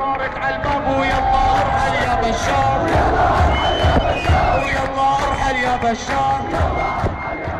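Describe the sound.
A large crowd of protesters at a demonstration against the Assad regime chants and shouts together in loud, rhythmic bursts, many voices merging into a dense roar with occasional higher cries rising above it.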